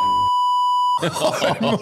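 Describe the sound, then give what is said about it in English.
A steady, high-pitched censor bleep holds for about a second, briefly overlapping a muffled sound at its start, then cuts off as a person starts talking loudly. “We'll do the beeps. Just do beeps over that.”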